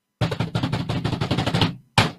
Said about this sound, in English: New York is to finally enforce the, I hate to say this, but I'm going to ask for a drum roll.